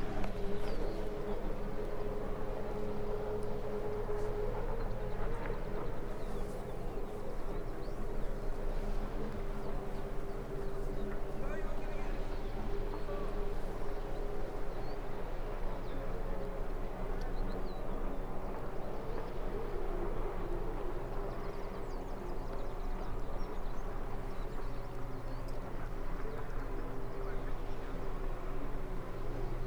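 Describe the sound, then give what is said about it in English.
Four jet skis passing by, a continuous engine drone with steady whining tones over a low rumble that stays fairly even in loudness throughout, with no clear rise or fade. “Four jet skis just about to go past me.”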